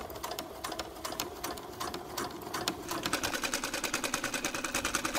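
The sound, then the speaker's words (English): A sewing machine runs steadily, its needle clattering in a fast, even rhythm that quickens and grows louder and more regular partway through. “TBM, you can turn off your sewing machine.”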